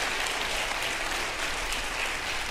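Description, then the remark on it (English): An audience claps hands in a steady, dense burst of applause at an even level for a couple of seconds, with no voices standing out, responding to a call to clap if they have obeyed the gospel of Jesus Christ. “Clap your hands if you've obeyed the gospel of Jesus Christ.”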